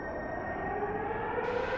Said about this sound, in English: Air horns. Emergency sirens. What the hell is going on?